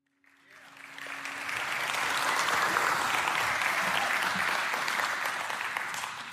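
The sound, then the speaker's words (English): Steady applause from an audience at a church service, starting quickly and swelling into a dense, sustained wash of clapping that holds for several seconds before easing slightly at the end. “That's very nice of y'all to clap.”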